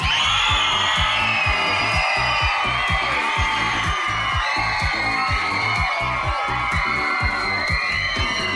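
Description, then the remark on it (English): A large audience at an ugliest dog contest cheers for their favorite dog, Miss Ellie, at the MC's request; loud, continuous overlapping shouts, whoops and screams layered over dense clapping, the roar sustained at full intensity throughout. “He asks them to cheer for their favorite dog.”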